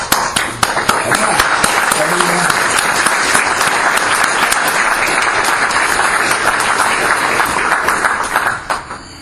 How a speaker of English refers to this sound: And I want to applaud you. Thank you.